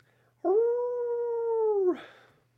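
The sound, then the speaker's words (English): A single long, steady howl through the trees holds its pitch for about a second and a half, then dips and breaks off into a brief breathy rasp. It sounds fairly loud, with no voices. “And then you hear through the trees a howl.”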